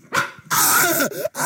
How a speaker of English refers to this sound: So many classics, such as Woman in Shower Getting Stabbed. And Man Getting Attacked by Dog.